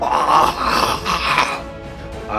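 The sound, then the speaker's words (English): A rough, guttural creature shriek from even further away than before, with a harsh, raspy tone, rising in several loud surges during the first second and a half, then trailing off into a fainter, ragged moan. “And then, as you just as you're preparing for something to happen, you once again hear this guttural shriek of the creature.”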